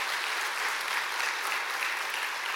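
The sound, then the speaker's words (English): Steady applause from a church audience, a dense crackle of many hands clapping at an even, sustained level for a few seconds with no voices standing out. “We can applaud. We can cheer for that.”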